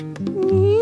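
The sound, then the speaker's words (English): A voice imitates the yowl of an angry little kitten being put into water: a single loud, drawn-out wail that swells and rises in pitch over less than a second, with no other sounds. “But as soon as Jack tried to put that cat in the water, out came his claws.”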